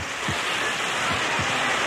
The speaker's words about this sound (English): Pumpers are ready, all hoses coming up. We'll flood that thing with water from all angles. All right, here's the signal. Open them up! Full blast!